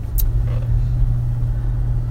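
Steady, deep road rumble from inside a moving truck, a continuous low droning hum that holds level throughout, with a single brief click near the start and no talking.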